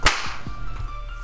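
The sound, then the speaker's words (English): A single sharp hand clap cracks out at the very start, loud and bright, followed by a few soft low thumps and a faint steady hum. “I clap Pop.”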